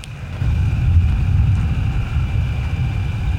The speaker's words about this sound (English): I am standing outside of a cemetery, middle of the country, the middle of nowhere. It's a dark and stormy night. That's not a cliche. It is actually a dark and stormy night. There is lightning and thunder.